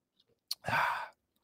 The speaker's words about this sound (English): Well, I got a Miller Lite right next to me right now. A Lester Lite. Kudos to John Lester. I'm going to take a good sip right here. Maybe you guys can hear it.